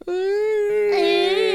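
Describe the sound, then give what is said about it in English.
A voice imitates the moan of a dying whale: one long, steady, mid-pitched wail held for over a second, turning brighter and more strained toward the end. “What if it's a dying whale? Well, I don't know if it'd be a ping. It'd be more like a.”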